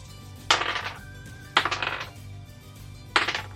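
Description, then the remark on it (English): Three separate bursts of dice clattering and rattling across a hard tabletop, each a quick tumble of clicks that settles within about half a second. Fairly loud, with no talking. A roll made with two bonus dice, coming up two 90s and a 20. “It's a good thing you gave me those bonus die, because I rolled two 90s and a 20.”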